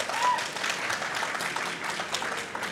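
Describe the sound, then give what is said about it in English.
A steady round of applause from a crowd, dense overlapping claps filling the whole stretch at fairly even loudness with a bright, crackling texture. “Round of applause.”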